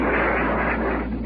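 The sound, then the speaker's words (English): A loud, dense barrage of anti-aircraft gunfire from a naval warship, including 20-millimeter and 40-millimeter tracer, blurs into a continuous rumbling roar, with no separate shots standing out. It sounds muffled, and no one speaks. “Heavy fire from the naval warship, as well as 20-millimeter and 40-millimeter tracer, were the sounds you just heard.”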